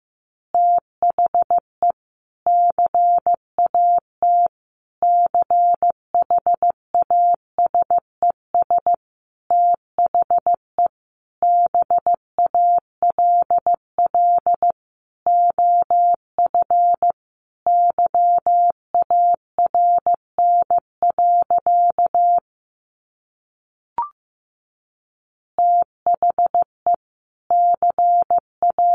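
Morse code at 15 words per minute sending easy phrases: a single steady mid-pitched tone keyed on and off in short dits and longer dahs, grouped with brief gaps, pausing once near the end before resuming.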